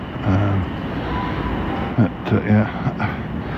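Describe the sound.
Steady low rumble of a busy railway station platform where someone waits for a train, with brief bursts of indistinct voices and a continuous background hum of trains and machinery.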